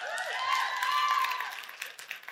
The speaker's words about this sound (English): And listen, I'm all for the claps. I appreciate it. I do. And I'm not telling you not to do it.